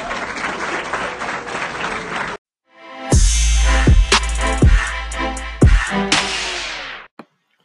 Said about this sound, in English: Thank you so much. Another round of applause for them. Thank you so much.